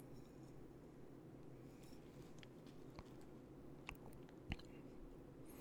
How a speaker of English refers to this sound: Let's take a little bit of pour, or let's take a little sip now, you guys. So if you're drinking whiskey with me, cheers, Schlante. See what we think of Elijah Craig barrel proof B521.